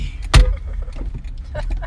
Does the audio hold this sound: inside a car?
yes